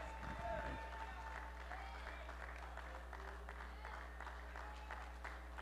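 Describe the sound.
An audience claps their hands in a steady, continuous stream of overlapping claps, with a low hum and indistinct voices underneath throughout.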